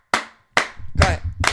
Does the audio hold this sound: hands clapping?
yes